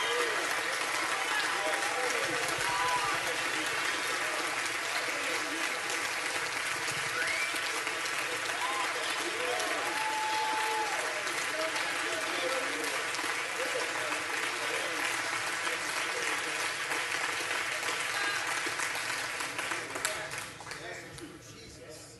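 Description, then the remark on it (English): An audience gives God a praise break, breaking into sustained, loud applause mixed with scattered cheers and praise shouts, steady for about twenty seconds before tapering off at the end. “We ought to just right now give God a praise break for everything that he has done for us.”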